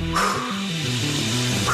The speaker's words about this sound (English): Dogs barking at him.